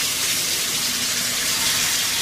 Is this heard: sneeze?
no